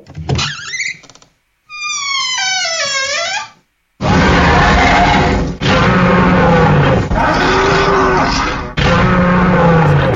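A monstrous minotaur roar sound effect: a brief creak, then a deep descending bull-like bellow, followed by three loud, harsh, grinding roars separated by short breaks.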